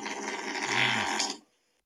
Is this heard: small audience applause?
no